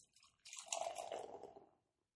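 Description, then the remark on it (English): A short liquid pour of a pink Short Fuse raspberry and passion fruit sour ale into a glass, a wet, gurgling splash and fizzy hiss that swells for about a second, then tapers off into silence. “It's really pink as it pours.”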